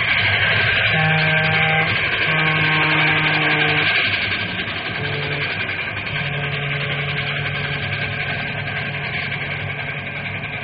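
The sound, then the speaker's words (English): A train, the Fireball Express, roars past a railroad crossing marked only by wooden cross arms, in a loud, steady rumble, its horn sounding in several long, low blasts over the din before the noise eases slightly toward the end. “Hey, look at that monster come roaring.”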